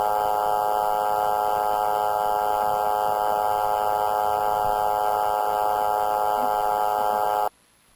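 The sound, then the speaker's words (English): A spirit phone recording from a first experiment, said to contain an embedded female voice: a steady, loud electronic hum with a dense stack of buzzing harmonic tones and a rough noisy undertone, droning unchanged for about seven seconds before cutting off abruptly. “On the spirit phone, is there somebody who would speak to it? First experiment.”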